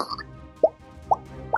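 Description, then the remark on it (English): A voice imitates tentacle suckers popping with three wet mouth pops spaced about half a second apart, each short and fairly loud, over a faint background hum. “It's the sound of its suckers.”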